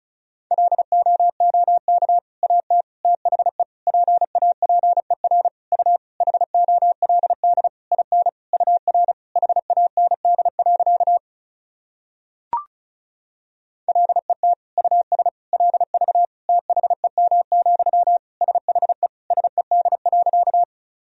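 Fast Morse code at about 35 words per minute, sending practice sentences built from the top 400 words and abbreviations: a steady mid-pitched tone keyed in rapid dits and dahs, broken by one short pause with a single click before the sending resumes.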